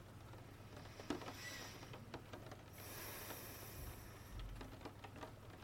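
rain falling

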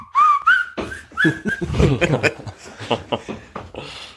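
whistling a song's melody

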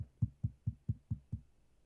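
knocking on a door

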